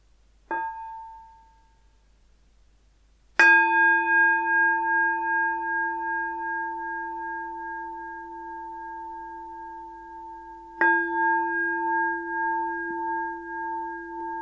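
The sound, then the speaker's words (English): A meditation bell rings three times at the start of a guided meditation: a brief, light first tap, then two full strikes that each ring out with a long, steady shimmering sustain amid quiet. “So we'll start with three sounds of the bell and begin with the usual settling in introduction.”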